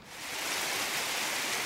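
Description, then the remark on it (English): A steady, unbroken rush of falling water from a waterfall used for fresh water, filling the short moment with a dense hiss that holds at an even level throughout, with no voices. “They have a waterfall for fresh water”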